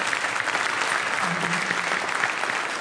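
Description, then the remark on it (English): A crowd applauds steadily for the mothers in the room, a dense, even wash of many hands clapping at a loud, constant level with no pauses for the full few seconds. “And everyone else, give them a round of applause.”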